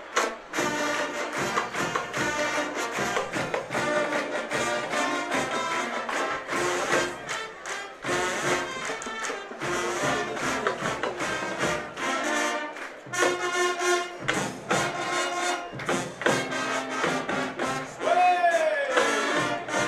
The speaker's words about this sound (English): the sounds of the T.Y. Tiger Marching Band jamming here with the … fight song.